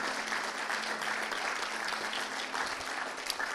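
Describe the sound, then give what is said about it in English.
A church audience applauds the Lord steadily, a dense wash of many hands clapping at once that holds at an even level throughout, with no voices standing out. “Let's give the Lord a big round of applause, shall we?”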